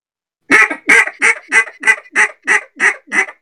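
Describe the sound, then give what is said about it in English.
A duck call blowing a bouncing hen sequence: nine loud, nasal quacks in a steady bouncing cadence, the first two slightly longer, ending with a slight hiccup, with no voices. “Red Twig says, have you guys ever heard of a bouncing hen call, and have you heard it in the field or on the water?”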